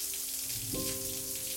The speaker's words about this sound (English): I will run my hand quickly under the water to wash the purple away.